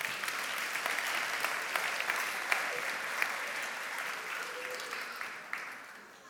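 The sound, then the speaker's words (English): A steady ripple of applause from a group at King's church for a person left on stage, dense overlapping claps at moderate volume with a few sharper individual claps standing out, sustained for several seconds without any talking. “Let's give him a little ripple of applause.”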